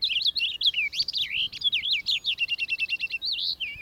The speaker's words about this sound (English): The finches, as a class, all have short conical bills with tails more or less forked. The purple finch heads the list in varied musical ability.